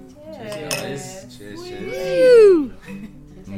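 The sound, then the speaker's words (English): Brief glassy clinks of wine glasses touching in a New Year toast, mixed in with overlapping voices and a loud, rising-then-falling vocal exclamation. “Let's go back to the mini celebration that needs to unfold here, if we're allowed. Yeah, of course. Cheers.”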